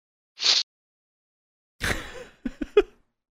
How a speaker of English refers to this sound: Sorry. No, it's all right. I'm having like a sneeze attack or something. I don't understand what's going on right now.